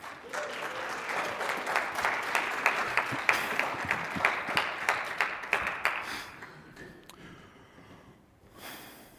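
An audience applauds as a pastor is called up, a dense wash of many hands clapping that swells into a steady, slightly rhythmic beat before thinning out and fading over the last few seconds.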